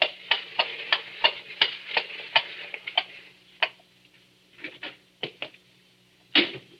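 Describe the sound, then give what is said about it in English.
A horse-drawn four-wheeler carriage pulls up before a door in a gas-lit street late on a summer night: hooves clop in a quick, even rhythm, then slow to a few scattered steps before halting, with one final heavier knock. No one speaks. “And late one summer night, when the shutters were long closed on those windows, a four-wheeler drew up before the door in the gas-lit street.”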